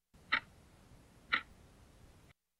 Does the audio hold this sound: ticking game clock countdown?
yes